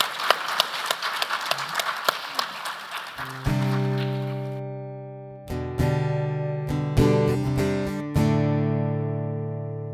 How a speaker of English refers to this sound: I just want to say a massive thank you to our three panelists. So if we can just give them a round of applause.